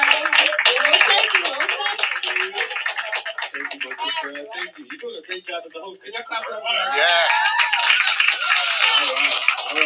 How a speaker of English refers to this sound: So our next guest, and I want some claps, okay? We're clapping, okay?